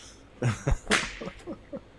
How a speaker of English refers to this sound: Have a whip sound?